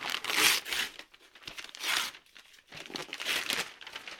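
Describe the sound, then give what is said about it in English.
Crisp paper crinkling and tearing in several loud bursts as pink wrapping paper printed with little white cupcakes and yellow flowers with green leaves is ripped and pulled off a gift, with short pauses between pulls and no voices. “I'm currently taking off this pink paper that has little white cupcakes with yellow flowers with green leaves on them. Taking that off.”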